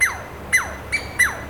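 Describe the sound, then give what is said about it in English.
A pair of squirrels chattering territorially: four harsh, squeaky calls at a quick, steady pace, each a sharp burst that slides downward in pitch, fairly loud over a quiet background with no talking. “They waste no time in telling you and other squirrels you're in their territory, particularly if you're near their central larder of conifer cones.”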